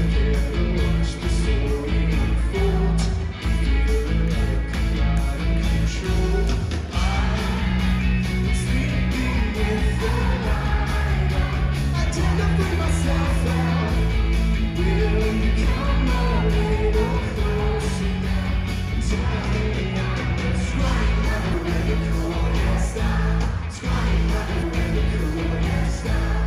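A live band performing a song at the opening concert of their tour: loud, dense rock music with a driving low end and steady beat, playing continuously without pause for the whole stretch.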